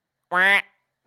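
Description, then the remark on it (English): A person does a single loud, nasal quack imitating a duck, a short buzzy burst of about a third of a second that stands alone with a brief trailing tail. “Until you're done quacking.”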